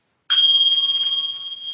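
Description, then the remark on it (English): A single bell is struck once, and its bright, clear tone rings on steadily, slowly fading over the next second and a half with nothing else around it. “Me and this bell.”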